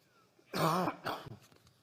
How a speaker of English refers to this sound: Cough is coming, sorry.